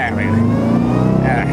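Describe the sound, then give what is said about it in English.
A truck engine revs loudly, a steady, throaty rumble that builds slightly in pitch as the loaded truck pulls away over a second and a half. “Getting the truck in.”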